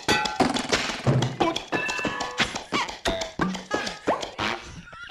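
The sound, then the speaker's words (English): An old car struggles to start, with a loud run of irregular clattering, sputtering bursts and squeaky, whining tones that rise and fall for several seconds without settling into a steady idle. “The sound of that old piece of POS.”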